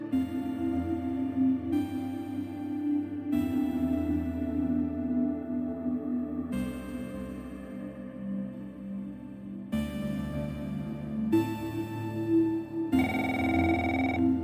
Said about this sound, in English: I woke up to the phone ringing. I leaned up from my chair and looked around the office. Everyone had gone home. I blinked and rubbed my eyes while the phone rang a second time.